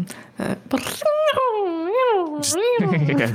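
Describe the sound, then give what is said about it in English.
A voice imitates a piccolo whizzing past with a Doppler effect, a high wavering whistle-like tone that swoops up and down in pitch before dropping, sounding a bit like a yowling cat, with brief breathy noises around it. “Yeah, that was my Piccolo. Yeah, the Piccolo Doppler effect.”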